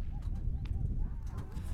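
A few irregular, fairly soft hoof clops from a horse on firm ground in the Black Hills of South Dakota on a sunny late-September morning, over a steady low outdoor rumble with faint indistinct voice-like murmuring.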